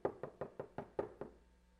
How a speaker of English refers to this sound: And when you hear that knock, when you hear the voice of God, you recognize it and do you do what he says?